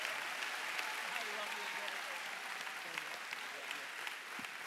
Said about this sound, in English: Come on, keep that round of applause going for King Jesus.